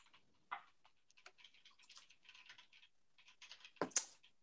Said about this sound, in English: Yeah, frantic typing.